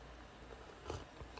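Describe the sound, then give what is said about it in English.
A single quick, quiet slurp of hot coffee with a little cold milk in it being sipped, followed by a faint smack of the lips, with no talking. “Want to sip it? We want to burn ourselves?”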